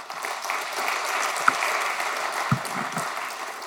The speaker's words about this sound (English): If you, is there anybody who doesn't attend Church on the Move? Raise your hand. Glory to God. Let's clap for them.